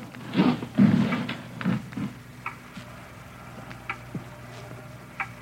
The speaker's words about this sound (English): It's a loud clock, ain't it?